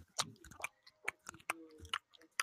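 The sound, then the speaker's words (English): Loud, wet chewing of gum right up close to the mic, a quick irregular series of smacking, clicking mouth sounds with no talking. “But if you want to hear chewing.”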